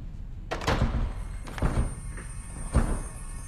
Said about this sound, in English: you broke the door.